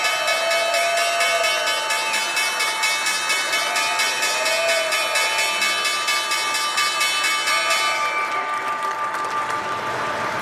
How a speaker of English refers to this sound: I'm …, live from the New York Stock Exchange. That was the opening bell. Big cheers today.